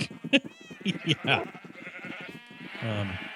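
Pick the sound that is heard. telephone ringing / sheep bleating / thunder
sheep bleating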